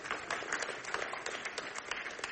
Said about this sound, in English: Okay? Yes, that's worth an applause. That's the good news.